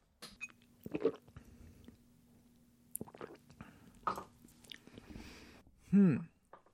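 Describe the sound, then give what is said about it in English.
Quiet sips and swallows of about half a cup of almond coconut milk creamer from a mug, with soft wet mouth clicks scattered throughout, ending in a brief louder voiced murmur. “But I have done what is probably not recommended and poured like half a cup into this mug. And I'm just going to drink that half a cup.”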